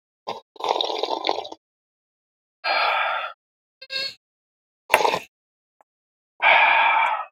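sipping coffee

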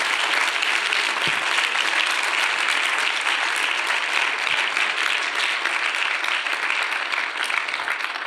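audience giving loud applause

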